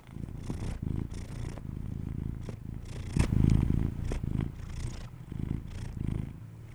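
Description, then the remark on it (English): A cat purrs close to the microphone in a steady, rumbling rhythm, with a louder, fuller burst partway through as it rubs its face on the microphone. No one speaks. “Even a brain fart from the cats”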